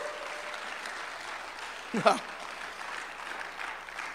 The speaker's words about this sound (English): Oh, come on, someone give the Lord a hand clap of praise. Woo!